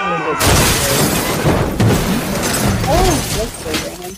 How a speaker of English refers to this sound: He ran into a cow. Oh god.